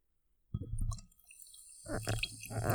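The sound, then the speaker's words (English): A fizzing drink crackles and hisses in two bursts, the first starting after a short silence and the second louder and denser with bubbly pops, with a low rumbling underneath. “Well, while you're doing that, we're going to pause for some ASMR fizz.”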